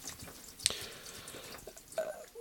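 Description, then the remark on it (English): Water splashes and trickles as plants are watered in a potting shed, with a sharp clink early on and a few drips over a steady soft wash of liquid. “I'm just giving my plants a bit of a water actually while I'm stood here.”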